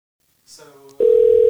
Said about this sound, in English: Oh, there it is. We are ringing in to